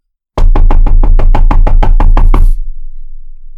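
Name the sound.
knocking on a door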